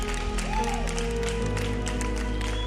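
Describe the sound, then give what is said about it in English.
A church audience applauds and cheers, giving praise to Jesus, in a steady, dense wash of clapping, with a brief rising-and-falling whoop early on and sustained keyboard-like tones humming underneath throughout. “Like, can we just make some noise?”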